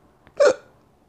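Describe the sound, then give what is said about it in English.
A single sharp, fairly loud hiccup from a drunk person, with a faint catch of breath just before it; otherwise quiet, with no talking. “I got the drunk hiccups.”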